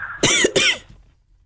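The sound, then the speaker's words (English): Two sharp, harsh coughs in quick succession, loud, with no talking around them and quiet right after. “It sounds like you're having a coughing problem.”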